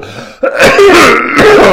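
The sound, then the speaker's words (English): A loud, raspy cough breaks out in two or three rough bursts, sounding harsh and throaty like heavy throat clearing, with no talking around it. “Oh my gosh, what a cough.”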